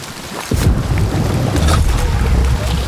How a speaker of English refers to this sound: So that was thunder. There's thunder and lightning, which will kind of, you can use to mask sounds a little bit as well. I was going to say, like, that sounds like a gunshot.